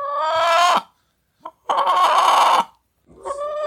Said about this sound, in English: Oh, yeah. That rooster is not happy about that either.